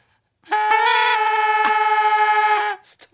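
A New Year's party horn blown in one sustained, buzzy blast for about two seconds, loud and steady with a slight wavering, followed by a brief breathy trailing sound.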